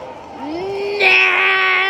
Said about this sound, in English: Oh my God, it's my cat. Who released him?